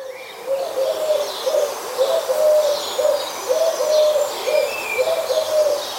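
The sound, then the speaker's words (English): A Eurasian collared dove repeats its soft three-note cooing call in a steady rhythm while small birds chirp faintly in the background. “The call sounds a little bit like a cuckoo and is a three-note woohoo.”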